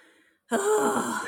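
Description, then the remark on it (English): A sudden, sharp intake of breath that bursts in after a brief quiet and holds as a loud, breathy rush, with no talking. “Why did you gasp like that?”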